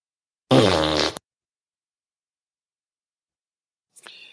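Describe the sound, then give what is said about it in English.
A single loud, buzzy fart noise lasting under a second, followed by a few seconds of silence and a short, faint rustling sound near the end. “Make the fart noise.”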